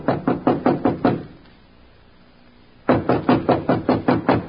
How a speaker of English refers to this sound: Standing at the door, he hesitated. Then, squaring his shoulders, he knocked.